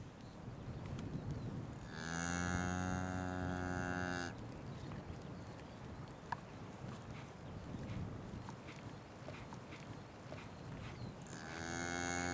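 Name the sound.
cattle mooing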